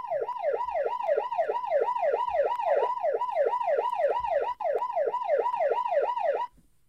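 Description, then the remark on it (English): A loud ambulance siren yelps in rapid, steady up-and-down sweeps for about six seconds, continuous, then cuts off abruptly. No one speaks. “Must needs play the ambulance effect for my infirmary update.”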